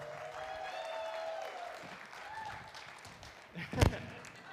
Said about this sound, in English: This is the best way to come out, right? I want you guys to give a big round of applause